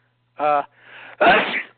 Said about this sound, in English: Bless you.